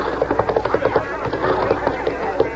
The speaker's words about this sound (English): Watch out there. Loose horse.